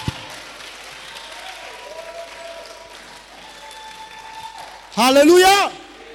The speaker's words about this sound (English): If you are clapping to Jesus, clap and let the devil know you are clapping to Jesus.